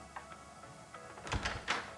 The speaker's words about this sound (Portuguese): Ouve-se uma batida na porta e ele salta da cama para atender.